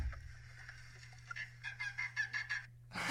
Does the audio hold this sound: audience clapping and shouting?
no